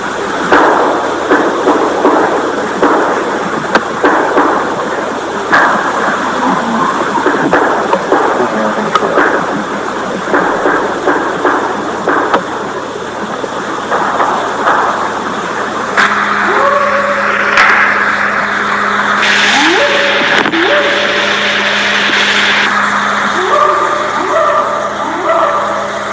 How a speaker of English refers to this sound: So what we just played for you was kind of the whoops and some of the knocking noises.